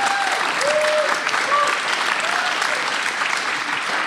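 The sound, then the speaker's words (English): Steady, dense applause from a sizable audience welcoming four volunteers who support the Zio community fills the whole stretch, with a few faint whoops or cheers rising over the clapping. No one speaks. “Now I know we don't do this for recognition and applause, but there's some amazing work done”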